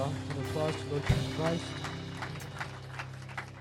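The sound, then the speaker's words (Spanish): Audience applause for the Lord Jesus Christ, heard as scattered, irregular claps over a sustained musical tone, with a steady low hum running throughout the few seconds. “¿Por qué no da un fuerte aplauso al Señor Jesucristo?”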